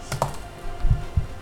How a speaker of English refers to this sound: Let's have a percentage dice roll.